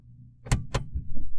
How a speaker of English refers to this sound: Anyway, the garage door just opened behind me, so that was why there was a lot of noise.